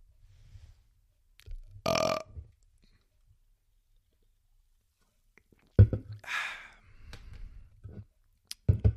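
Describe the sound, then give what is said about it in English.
A loud, brief burp, followed by a second rougher belch, from a person who has been drinking a lot of sparkling water, with faint breaths, mouth clicks and soft handling noises filling the quiet between them. “I've been crushing sparkling water. That's why I'm burping so much.”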